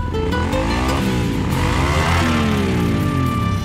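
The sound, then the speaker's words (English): A motorcycle engine revs loudly, its pitch climbing and falling in repeated surges over a steady rumbling idle, with no voices. “Don't horse around when it comes to motorcycle safety.”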